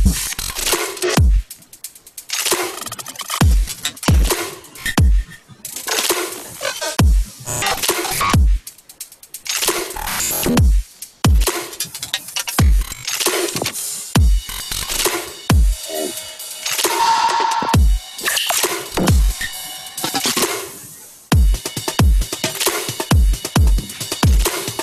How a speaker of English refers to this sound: it looks like in your drum section, it looks like some quite intricate drum programming is going on or something. Something looks pretty intense.